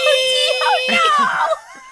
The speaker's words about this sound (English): The screaming deer at Nara was a bit cursed sounding. They scream? It was haunting.